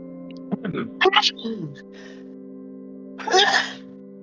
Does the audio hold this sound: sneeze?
yes